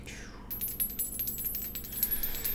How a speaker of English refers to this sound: All right. Has to be a 1 through 27. No shit, it's 28. I'm going to spend one luck, I swear. Okay. These dice are too good, and I miss my old ones